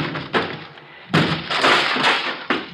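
Heavy thuds and cracking impacts hit in uneven bursts, a door being broken down with splintering, crashing blows, loud with no talking.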